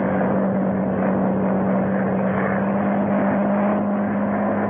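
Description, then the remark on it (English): A monoplane circles overhead, a loud, unbroken engine roar with a deep humming tone running through it from start to finish, with no voices. “It was flying high. It circled about me in narrowing circles, the way a hawk wheels before it pounces.”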